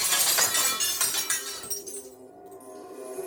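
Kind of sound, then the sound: sound effect, glass shattering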